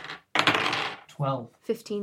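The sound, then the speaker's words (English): A brief, busy clatter of dice rolling and tumbling across a hard surface as players roll for initiative, then short bursts of people speaking. “Roll for initiative, everyone.”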